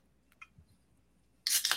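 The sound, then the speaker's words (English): A beer can cracks open: a couple of faint metallic clicks, then a sharp pop and a loud, brief fizzing hiss of escaping gas. No one speaks. “Together each and every Wednesday afternoon here on YouTube Live, cracking beers.”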